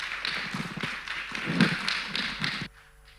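An audience at Alpha Omega Church applauds to welcome a guest speaker, a dense, steady patter of many hands clapping at moderate loudness for under three seconds before cutting off abruptly, leaving a faint quiet hum.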